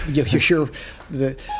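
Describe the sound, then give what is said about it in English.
A Siri voice assistant activation chime from a phone set off by an elbow resting on it: short, bright electronic tones ending in a brief steady beep, sounding among murmured voices. “Siri's always finding a way in our podcast.”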